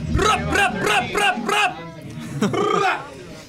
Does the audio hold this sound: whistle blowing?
no